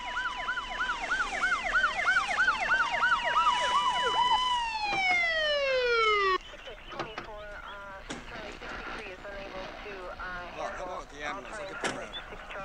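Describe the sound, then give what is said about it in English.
A loud police siren yelps in rapid rising-and-falling cycles, then winds down in a long descending wail before cutting off, after which people start talking. “Why do the cops have their lights on and why are they speeding when the ambulance is already there bringing the fucking dead bodies out?”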